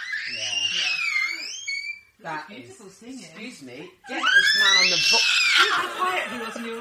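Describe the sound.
A pet dog howls in long, wavering high-pitched notes while its owner's son sings along in a lower voice, the two singing together at points. The howling comes in two loud stretches, with a short sung passage between them.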